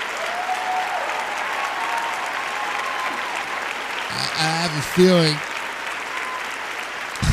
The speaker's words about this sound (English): I have a feeling you already know the material. You'll clap at almost anything, pretty much.